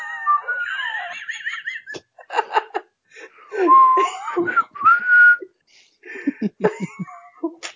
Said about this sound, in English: It'd be great if the whole podcast was just us whistling jazz songs we like.